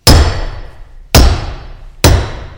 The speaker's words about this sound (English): This is why I'm out in my workshop today. I'm pounding on an anvil, and I'm having us hear the ringing of that metal, that iron, that with a sword in between the hammer and the anvil can make the sound of peace.